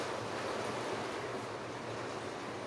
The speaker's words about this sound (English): Yes, it is raining in the background, so please don't.